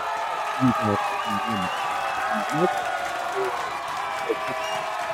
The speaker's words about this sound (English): And I told him I was going to give him a big fat round of applause for saying that. A cheer, rather.